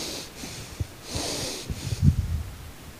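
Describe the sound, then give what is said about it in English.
Heavy, forceful breathing through the nose, with three harsh hissing breaths in a steady rhythm and no talking. A person appears to be imitating tense, angry breathing, as if trying to control their breathing when angry. “Where you're so angry, you're trying to control your breathing by breathing through your nose and you just...”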